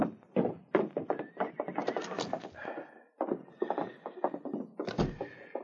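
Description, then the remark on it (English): Horses neigh and stamp behind a small roadhouse, a high whinny rising over a busy run of hoof thuds and knocks that keep going in an uneven rhythm. “the outlaws left their horses in back of the small roadhouse and followed Chet to the front door”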